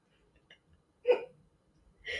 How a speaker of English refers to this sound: Excuse me. I don't know if that mic picked that up, but I just burped.